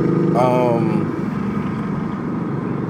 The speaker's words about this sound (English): There's a motorcycle next to me right now, so...